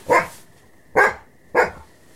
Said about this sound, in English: What are you barking at?